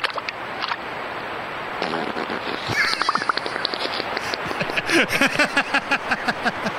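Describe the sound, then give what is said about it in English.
A beaver settling into the water in a wooded area, captured on a nature cam, breaks wind underwater. A rapid burst of gurgling, popping bubbles flutters and sputters for several seconds over a steady background hiss, growing louder toward the end. “What you're about to hear is an adorable little beaver in a wooded area settling into the water. Then it lets one rip, bubbles and all.”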